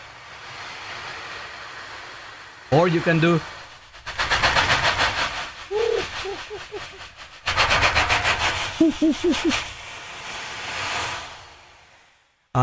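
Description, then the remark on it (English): An ocean drum, a frame drum like a tambourine without jingles, with a head on both sides and beads inside, is moved carefully in a circle so its beads roll across the head in two long, hissing swells that rise and fade like waves breaking, with brief speech before and a few short voiced sounds over the wash. “And as you move it circularly, you move it carefully, and it gives you the sound of waves.”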